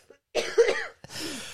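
Two rough coughs in quick succession, the first longer and harsher, the second breathier and trailing off, with no talking around them.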